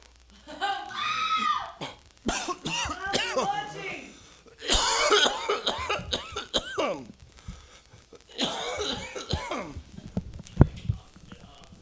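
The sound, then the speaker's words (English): Loud coughing in several rough bursts over about twelve seconds, mixed with strained throaty vocal noises and a sharp final hack near the end. “Got a cough to get off.”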